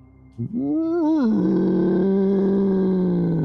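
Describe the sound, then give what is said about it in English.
A loud, deep guttural groan from a massive frog-like creature with vine-like tentacles in a crystal cavern swells up with a wavering, rising pitch, then drops and settles into a sustained low rumbling moan that holds steady to the end. “In that moment, the breathing stops as you begin to hear a loud, guttural.”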